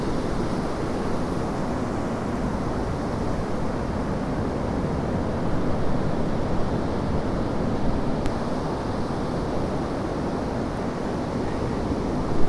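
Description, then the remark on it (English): A steady, continuous roar of surf washing onto the golden sands of Puttsborough Sands, beside Woolacombe Sands, on 27 September 2017, broad and unbroken, with gusty wind buffeting the microphone and no voices. “I've got a bit more shelter on Puttsborough Sands.”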